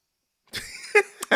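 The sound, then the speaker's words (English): A person with a small lingering cough coughs and chokes several times, short harsh bursts after a moment of silence, with a strained, throaty rasp between them. No speech. “But I'm choking. I have a small cough that I refuse to go away.”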